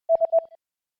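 A quick run of short electronic beeps, like telephone keypad tones being dialed, about four or five presses in half a second, clear with no voices.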